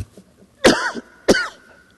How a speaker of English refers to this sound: Sorry, I got a cough.